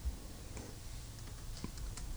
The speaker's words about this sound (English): Can you hear me typing away?